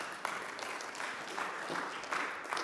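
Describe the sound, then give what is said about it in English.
A steady burst of applause from an audience, many hands clapping in a dense, continuous patter at a fairly even level with no voices standing out. “Is that why you're clapping?”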